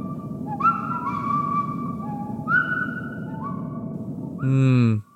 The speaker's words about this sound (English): Yes, just as I thought. There's a tiny old man in there. A tiny old man? Yep, a tiny old man in your ear, whistling a lovely little tune.